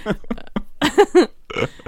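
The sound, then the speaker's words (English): A series of short, buzzy fart noises made with the mouth, coming in quick bursts with brief pauses, a couple stretching into a longer wet rasp. “Anyway, moving on from fart sounds that we make all day, literally all day.”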